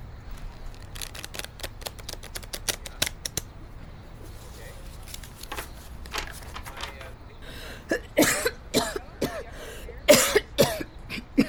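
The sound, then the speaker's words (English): A string of harsh, rasping coughs bursts out near the end, loud and wet-sounding, following a stretch of quick soft clicking and rustling as a tarot deck is shuffled. “That's a nasty cough.”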